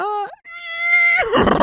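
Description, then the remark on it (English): A person vocally imitates a horse's neigh, a loud, quavering whinny with a high sustained pitch that breaks into a rough, breathy snort at the end, alone. “Can I get a horse cry out of you?”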